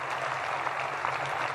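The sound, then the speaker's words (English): Steady applause from a large audience at Marshall, where rockets are developed, a dense continuous patter of many hands clapping at once without pause. “Give yourselves a round of applause for persevering here at Marshall and developing the rockets of the future.”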